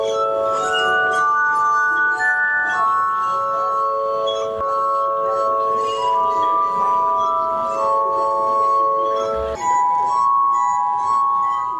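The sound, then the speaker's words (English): A glass harmonica, the instrument invented by Benjamin Franklin in 1762, plays a slow, continuous melody of sustained, ringing tones that overlap into shimmering chords, clear and fairly loud throughout with no voices. “His glass harmonica was the most popular instrument for weddings and funerals in England and then throughout Europe.”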